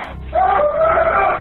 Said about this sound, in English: I'm okay! My dad just went outside screaming.